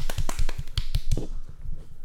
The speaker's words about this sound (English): Claps? Were claps for that?